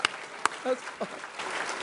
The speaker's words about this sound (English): Now, if you like those, clap your hands.